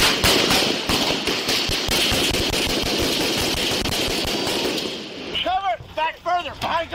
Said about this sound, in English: At one point in the video, an officer is struck by gunfire while multiple officers continue to fire back.